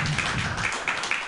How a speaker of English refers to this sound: Applaud for that son of a bitch. Yeah.